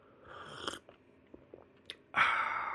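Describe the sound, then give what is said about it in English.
Quiet slurps from a cup of tea, a short sip followed by a few small mouth clicks and a longer, louder drawn-in slurp at the end, with no talking. “I'm going to take a sip of my tea before we hop into a couple other topics here.”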